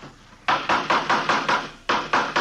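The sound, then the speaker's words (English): A hammer taps wood while a wheeled wooden coaster is being built, in a quick, steady series of about six sharp knocks, pauses briefly, then strikes a few more times. The blows are crisp and fairly loud, with no voices. “Say, would you hand me that hammer there, officer?”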